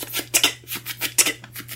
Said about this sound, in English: And they start rushing back deeper into the room, and you just hear, like, ropes getting cut.